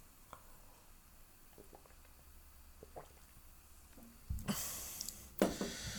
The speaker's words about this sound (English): Hopefully that drinking of water tantalized you.